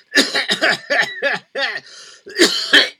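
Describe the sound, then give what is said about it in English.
A series of rough, raspy throat clearings and cough-like bursts, fairly loud, coming in short repeated pulses with a brief pause in the middle before two final harsh clears. “Are you clearing your throat?”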